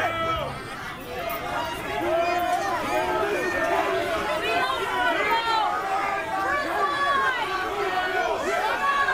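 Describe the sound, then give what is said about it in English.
A large crowd shouting and screaming together, a dense, continuous wall of overlapping raised voices that stays loud and steady for the whole stretch. “Those are people screaming, you fucking tyrant, at the drama school reject.”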